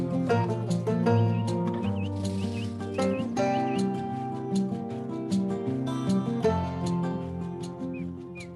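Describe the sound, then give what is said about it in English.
Outro music with a steady rhythm and layered tones, with small, high chirps of a little finch mixed into the upper part of the mix, repeating briefly and quietly above the instruments. “I just noticed there's a bird in that music. There's always been a bird. Just reminds me of springtime. Yeah, it's a little finch.”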